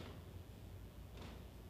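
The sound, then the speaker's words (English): Doors opening as someone walks through, heard as two soft, muffled bumps over a low steady background hum, fairly quiet, with no one talking. “would you shut those doors as you go through there?”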